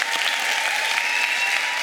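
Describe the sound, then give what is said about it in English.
Steady, dense applause from a large audience at a Lifehouse church service, a continuous wash of clapping hands at a constant loud level with no voices standing out. “Would you give them a huge round of applause?”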